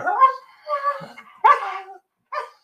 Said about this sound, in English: their favorite dog, is speaking